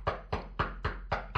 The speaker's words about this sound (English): And, like, he's running in the grass and it's going...